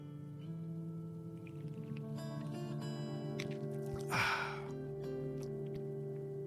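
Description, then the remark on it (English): A single short slurping sip of Nicola Coconut Cola, a brief wet noisy burst that rises out of a steady low electrical hum, with no talking. “One more sip. Please indulge me.”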